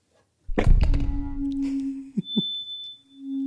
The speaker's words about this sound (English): That was like a thud. Boom. Yep. Power. Power. Someday that mic is not going to make any more sound. Today is not that day.